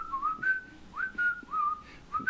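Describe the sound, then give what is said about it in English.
A person whistles a short, clear melody of rising and sliding notes in several quick phrases, moderately loud, with no talking. “I learned to whistle in third.”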